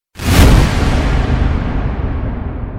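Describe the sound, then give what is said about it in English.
A single sharp, loud starting pistol bang bursts out suddenly, followed by a long, rumbling, hissy tail that lingers and slowly fades. No one speaks. “Used to shooting off, hearing the bang.”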